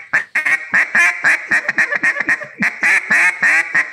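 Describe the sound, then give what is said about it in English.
A duck call blows a rapid, rhythmic run of loud, raspy quacks, steady in pace, with no talking over it, as a caller practices the rhythm, opening a hand with every quack. “Like I'm sitting there looking on the screen right here and I'll get on the thing and I'll basically just, every time I quack, I'm opening my hand, right?”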